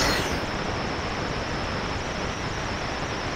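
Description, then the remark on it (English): The blast cannon in a robot's arm fires: a sudden sharp blast bursts out and gives way to a steady, loud roaring hiss that holds at an even level for several seconds, with no voices. “Well, you see, every robot arm is equipped with a blast cannon.”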